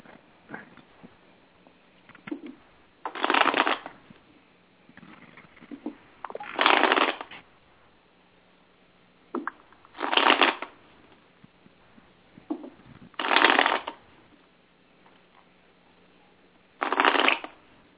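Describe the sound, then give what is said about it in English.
A deck of tarot cards is shuffled over and over in five short, crisp riffling bursts, spaced roughly three to four seconds apart, fairly loud against a quiet background with no talking. “shuffling.”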